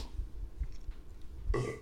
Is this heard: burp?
yes